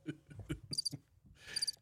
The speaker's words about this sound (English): The cricket.